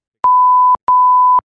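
Two loud, steady censor bleeps, each about half a second long and separated by a brief gap, with sharp clicks where each tone starts and stops. No voices are heard.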